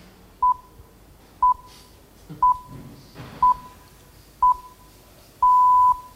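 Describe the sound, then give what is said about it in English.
BBC radio time signal pips: five short, steady high beeps spaced a second apart, then a sixth, longer beep marking the hour, 2 o'clock, with faint background murmur underneath. “When you hear this, you'll hear it's about accuracy and precision, which are values shared by BBC News.”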